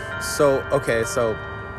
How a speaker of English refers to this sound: It's a really nice bell. It's beautiful.